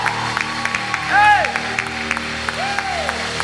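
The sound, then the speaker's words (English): A church crowd claps steadily for about 30 seconds in a dense, continuous patter to praise God, while voices rise in cheers, with a loud rising-and-falling whoop in the middle and another quieter one near the end. “Somebody take 30 seconds, clap your hands and begin to praise Him.”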